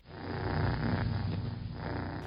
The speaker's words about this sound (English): When she wanted to be petted or scratched behind her ears, all she had to do was find her humans and purr loudly.